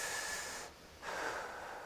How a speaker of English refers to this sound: All right. Everybody take a deep breath, okay? Ready? One, two, three.